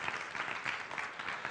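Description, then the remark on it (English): An audience applauding a woman, dense overlapping claps forming a steady, fairly loud wash that holds evenly across the moment without any voices on top. “Now, you got to give her a big clap right now because she really doesn't want to do this.”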